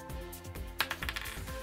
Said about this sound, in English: Let's roll some dice.